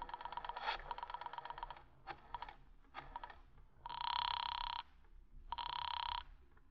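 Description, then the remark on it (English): Rapid clicking and rattling for a few seconds as a call is placed on a borrowed telephone, then two long buzzing telephone rings heard down the line, each about a second long with a pause between, steady and moderately loud. “Do you mind if I use your phone a moment?”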